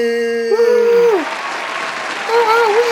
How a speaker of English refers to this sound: Oh, you guys relax. I hate to add the sound effects, right? It just seems like people are screaming for me.